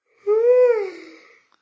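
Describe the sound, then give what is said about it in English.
A single drawn-out vocal yawn, fairly loud, its voiced pitch rising then sinking as it trails off into a breathy fade over about a second. “No yawning.”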